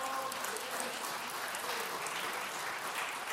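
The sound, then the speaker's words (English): A church audience claps to praise God during worship, together in a dense, sustained wash of hand claps, steady and fairly loud throughout with no single claps standing out, and no one speaking over it. “Would you praise God with a hand clap?”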